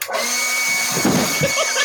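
A steady, loud motorized whine with bright high-pitched tonal bands runs throughout, with slight surges in intensity near the end, from a leaf blower running while a person stands on a skateboard, using it as a makeshift hovercraft.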